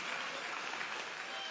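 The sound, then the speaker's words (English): Steady applause from an audience, many hands clapping in a dense, continuous wash of sound at an even level throughout. “So give them a hand clap while I take my money back.”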